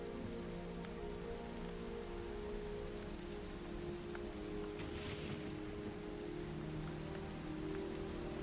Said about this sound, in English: You hear rain and thunder.